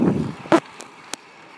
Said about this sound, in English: Hold on, I got some cars behind me.